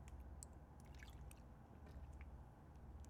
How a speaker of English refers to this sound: Sip of water.